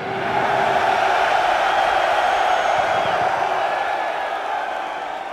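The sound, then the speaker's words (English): A large crowd of men at a concert roars in response to the singer calling for the fellas, a sustained, dense wall of sound, loud and steady for several seconds, like an arena full of voices shouting together with no break. “It's like a war cry. It's like Braveheart.”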